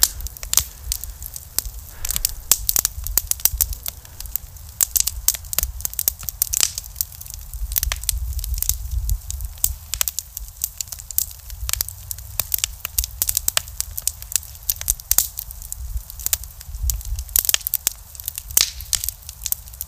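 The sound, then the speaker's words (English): A campfire crackles steadily with dense, irregular pops and snaps over a low, soft rumble of flames, continuous, with no voices. “Never let a good campfire go to waste.”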